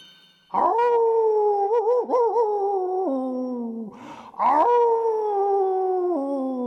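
A wolf howls loudly from outside, a long wavering tone that dips, then rises again in a second sustained howl that slowly falls in pitch.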